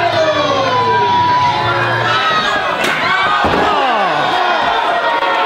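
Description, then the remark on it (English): A steel chair swung in a wrestling ring strikes with a sharp, loud crack midway, followed by a second hit, over a dense, constant roar of crowd noise and wailing, siren-like tones. “I get behind him and I grab the chair, and this happens. Oh, I hit this.”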